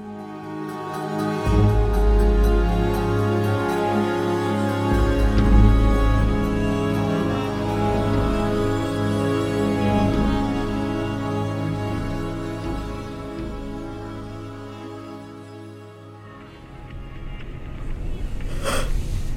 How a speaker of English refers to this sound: Traffic is terrible, so I'll just wake you up when we get there.